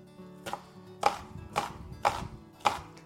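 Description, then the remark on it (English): A knife dices an onion on a chopping board: five crisp, evenly spaced chops at about two per second, with no one speaking. “I've just diced about half of the onion now”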